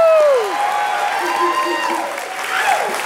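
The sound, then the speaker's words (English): A crowd in a church applauds and cheers steadily, with loud whoops and falling shouts rising above a dense wash of clapping that stays at an even level throughout. “We don't need to cheer all of them.”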